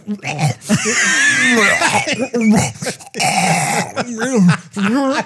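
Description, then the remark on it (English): A person coughs repeatedly in harsh, loud bursts, mixed with strained, throaty vocal sounds as if choking on something caught in the throat, with brief gasping pauses between fits. “Well, anyway, one of the things, maybe in that eyebrow you flicked off my head, it got caught in my throat when I was breathing.”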